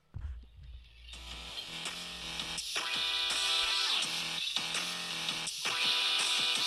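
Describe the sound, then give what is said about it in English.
A loud, buzzy 8-bit phone ringtone, an 8-bit Stone Cold theme, plays a bright, harmonically rich chiptune melody that starts after a low rumble and runs steadily with brief rhythmic breaks, with no voices. “I mean, for example, this was my last ringtone.”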